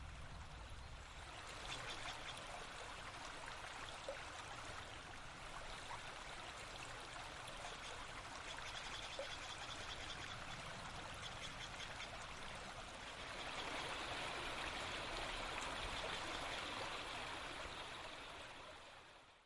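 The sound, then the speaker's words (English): A creek in a redwood forest in Los Gatos, California, flows steadily over rocks, its continuous bubbling and trickling filling the scene at a moderate level, swelling slightly louder toward the end, with no voices present. “We leave you this Sunday in a redwood forest and creek in Los Gatos, California.”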